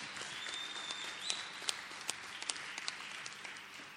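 An audience at a Lighthouse Group of Churches service claps for Jesus, a dense, steady wash of many hands clapping with a few sharper claps standing out, continuing evenly for several seconds with no talking.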